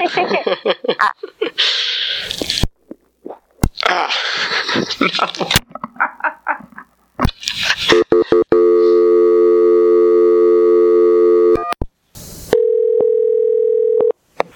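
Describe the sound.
People talk, then a phone call cuts off with a click as the phone drops service, and a steady, loud electronic phone tone drones for several seconds, followed by a brief burst of noise and a higher, sustained dial tone.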